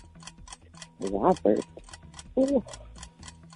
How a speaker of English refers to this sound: Oh, there's the timer.